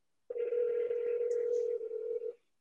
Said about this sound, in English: Do you hear the phone ringing? I do. Well, that's cool.